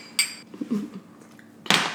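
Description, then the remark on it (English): Glasses of rosé wine clink together in a toast: a bright ringing chime rings out and fades, faint low murmurs follow, then a second, louder and sharper clink lands near the end. “I think it goes without saying what we'd be drinking today, but today we're drinking rosé in honor of Rose McGowan, so cheers.”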